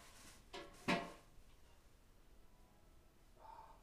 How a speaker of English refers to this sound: Okay, he's shutting the door.